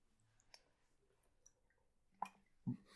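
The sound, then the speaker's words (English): Close-up mouth sounds of someone drinking water into a microphone: scattered wet clicks, then a sharp smack and a low gulping swallow near the end, very near and quiet, with no talking. “Welcome to the episode where we drink water into the microphone.”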